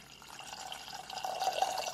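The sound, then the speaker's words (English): Water pours steadily into a pot holding a cup of granulated sugar, a cup of water added to make simple syrup, a continuous splashing trickle that grows slightly fuller toward the end, with no talking. “So a cup of granulated sugar goes into a pot. And then we have our water.”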